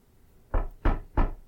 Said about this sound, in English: I knock on the door.